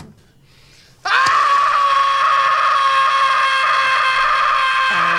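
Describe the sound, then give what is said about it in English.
After a second of near quiet, Gilbert Gottfried lets out one long, piercing scream at full volume in a clip from the movie Problem Child, holding it steadily for about four seconds before it falters at the very end. “Is this, is that Gilbert Gottfried from Problem Child?”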